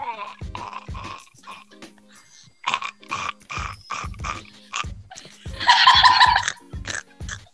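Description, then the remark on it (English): A series of guttural burps in quick succession, throaty and croaking, with a brief louder, rougher burst partway through. “Yeah, I'm just burping.”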